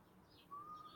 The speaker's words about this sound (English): Can you hear these birds, by the way?